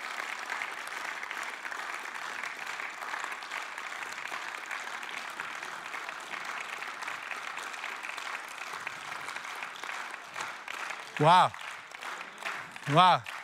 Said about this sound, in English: We're going to find our collective rhythm. When I say go, we're all going to clap and something epic's going to happen. All right, you ready? Go.